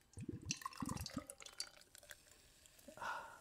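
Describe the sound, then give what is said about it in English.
A drink is poured into a big glass, with a few sloshing splashes and light glassy clinks, ending in a steadier trickling fill. No one speaks. “That was a satisfying pour.”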